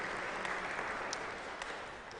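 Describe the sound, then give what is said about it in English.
A crowd at an oratory claps steadily for a couple of seconds for Donna Miller, who has stood up, a dense, even patter of many hands with a few sharper individual claps standing out, tapering slightly at the end. “I know you don't like to do that, but Donna, yes, you can applaud for her, please.”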